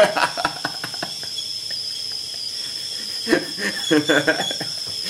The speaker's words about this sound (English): My kettle is whistling.